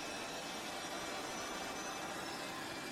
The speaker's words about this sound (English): Yeah, sorry, yeah, all doors and hatches are closed, and you're clear to start engine two, sir.